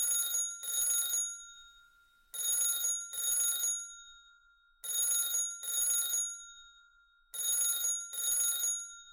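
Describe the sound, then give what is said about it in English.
A telephone rings in a steady double-ring pattern, four pairs of bright electronic trills separated by short pauses, clear with no voices. “You see him walk inside the door, and you hear a phone ring.”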